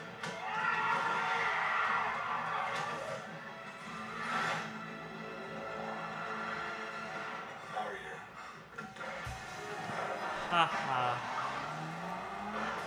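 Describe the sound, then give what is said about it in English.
A car in a film scene, driven by Abby Cornish, drifts with tires squealing and skidding in long sustained screeches over a revving engine, loud, with a voice speaking over part of it. “Who knew Abby Cornish was a drift king?”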